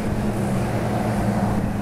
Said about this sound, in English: It is a Sony lapel mic, and this truck's going to pass me here.